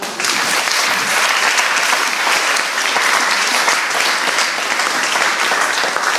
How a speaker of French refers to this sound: Tonnerre d'applaudissements.